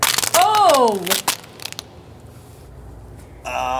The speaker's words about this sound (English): And I smashed my transmitter.